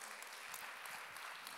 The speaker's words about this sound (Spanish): para quien pido un aplauso de cariño.